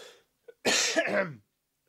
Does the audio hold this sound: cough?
yes